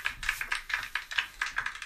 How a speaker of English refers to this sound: It's a little round of applause.